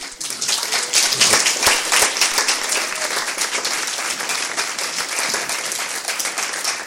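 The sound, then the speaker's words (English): Sustained applause from an audience at a USC program, a dense, steady wash of many hands clapping at once, loud throughout with no voices standing out. “That applause is a tribute to the incisive and eloquent insights you've given us today.”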